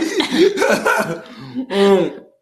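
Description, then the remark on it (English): A person lets out several loud, throaty coughs in quick succession, three or four hacking bursts with a short pause before a final, longer one. “They start coughing, sneezing, all kind.”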